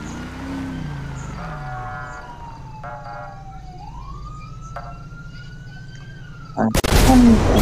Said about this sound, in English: Explosion. Explosion's at Seaview Road 2033.